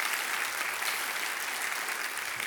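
Steady audience applause fills the whole stretch, a dense wash of many hands clapping at an even, fairly loud level with no voices standing out.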